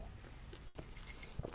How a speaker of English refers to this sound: Let me take a sip of my nice tea.